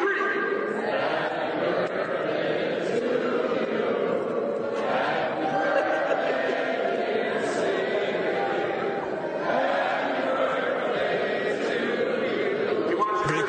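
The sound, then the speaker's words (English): About 17,000 Rangers and Devils fans at a Devils game in Newark, New Jersey, sing happy birthday together, a dense wash of thousands of voices at steady loudness for the whole stretch, with no single voice standing out. “And when the game went south, you know, the Devils were losing 5-1, we decided to cheer ourselves up by getting the crowd to sing happy birthday to no you.”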